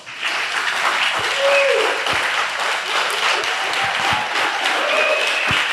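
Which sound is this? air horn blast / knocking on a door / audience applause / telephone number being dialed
audience applause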